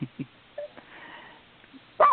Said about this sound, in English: Sorry about that. Dog fight on the sidewalk. Sorry. Sorry. What? Is that dog done?